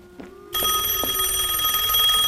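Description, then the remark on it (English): A studio telephone rings loudly, bursting in after a brief quiet moment and continuing as a steady, buzzing bell trill to the end. No one speaks. “Oh, there goes the studio phone.”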